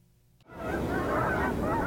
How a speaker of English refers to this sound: Geese are flying overhead at Eric Ewing's family home in the rural northern Colorado plains.